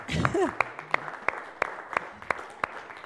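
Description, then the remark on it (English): The men of an audience clap in a steady rhythm for the mums coming forward to choose a gift: about nine sharp, evenly spaced claps, with a brief voice calling out at the start over a low murmur. “Man, you're not clapping very well.”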